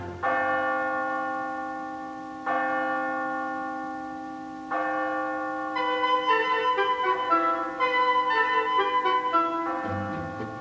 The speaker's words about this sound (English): Somewhere, a ponderous tower clock slowly dropped a dozen strokes into the gloom.